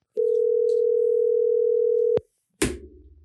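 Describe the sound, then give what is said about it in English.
A steady telephone dial tone holds for about two seconds, then cuts off with a click, followed by a brief pause and a burst of line noise as the call connects. “You want to get him on the phone? Let's make it happen. All right. Give him a call.”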